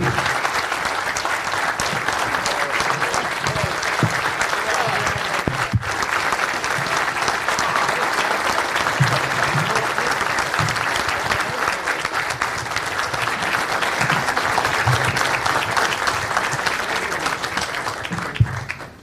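Sustained audience applause fills the whole stretch, a dense, steady wash of many hands clapping at close range with brief cheers, fading slightly at the very end.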